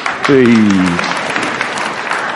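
An audience claps steadily for a participant about to play a ball-throwing game, in a dense, continuous patter for a couple of seconds, while a short, falling vocal cheer rings out over the applause near the start.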